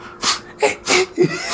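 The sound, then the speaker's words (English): A voice imitates a man snorting cocaine: four quick, forceful snorting sniffs in a rapid back-to-back rhythm, each a sharp breathy hiss through the nose with short pauses between. “Your man was snorting cocaine, like machine gunning, snorting.”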